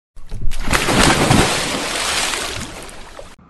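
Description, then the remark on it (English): A loud splash of water bursts in and churns with broad, frothy sloshing for about three seconds before cutting off abruptly, as Pai Mardana ji is thrown into a pot. “And then came the sound of splash.”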